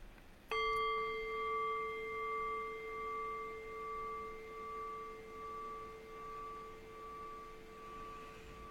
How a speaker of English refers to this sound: Okay, so I'll ring the bell and I'll just do a little bit of guiding, maybe for about 15 minutes or so.